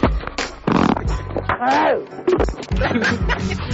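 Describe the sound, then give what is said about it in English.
Loud, sputtering fart noises come in several rough, buzzy bursts, with a squeaky tone that rises and falls partway through, mixed with some voice-like sounds. “I have gas. Listen.”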